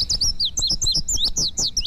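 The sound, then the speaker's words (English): An indigo bunting sings a bright, rapid series of high, sweet chirping notes, several quick phrases tumbling together loudly, over a low rumbling background. “For a more accurate description of the male of the species of today's featured feathered friend, the indigo bunting.”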